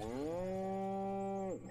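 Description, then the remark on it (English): A single long cow moo, steady and sustained for over a second before dropping off at the end; loud, with no talking. “All right, I'm scanning this cow's brain.”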